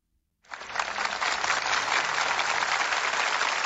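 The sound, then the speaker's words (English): A burst of recorded applause from an Alexa smart speaker word game starts abruptly after a brief silence and continues steadily, a dense crackle of many hands clapping at an even, fairly loud level with no voices. “I don't need the applause.”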